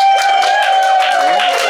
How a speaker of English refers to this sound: So I'm going to ask you to cheer for the party you want to vote for. So any votes for the Thunderbirds Go party?